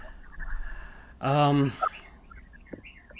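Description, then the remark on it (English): A bird calls once inside a home, a loud, brassy half-second cry, followed by a few faint, brief chirps against a quiet indoor background. “Is that a bird? That's a bird in my place, yeah.”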